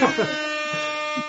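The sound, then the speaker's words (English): A blaring DJ air horn blast with a harsh, buzzy tone holds steady for over a second, with a few short voice bursts layered on top. “if Angelique gets kahunas in the conversation, then she gets a DJ air horns”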